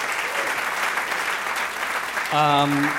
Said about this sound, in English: Thank you for braving traffic and weather. You guys, please, another round of applause